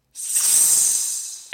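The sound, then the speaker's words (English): A sizzling hiss sound effect, a bright, airy rush that starts abruptly and holds steady for over a second before fading, then a fresh burst begins right at the end. No voices. “That was literally sizzling.”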